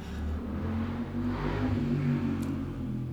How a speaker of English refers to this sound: It's a Saturday, which is when I'm often recording. So you're always going to hear a motorbike.